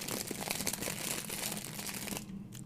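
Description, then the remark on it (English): Foley crinkling of a crunchy candy wrapper, a dense stream of sharp crackles and rustles that runs steadily for over two seconds, then drops off abruptly near the end. No one speaks. “The crunchy wrapper, I think, is pretty quality Foley work.”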